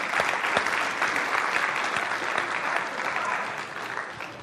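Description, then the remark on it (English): A crowd applauds a guest speaker steadily, a dense wash of many hands clapping at an even, fairly loud level that holds throughout and eases off slightly toward the end. No one speaks. “Are we going to clap?”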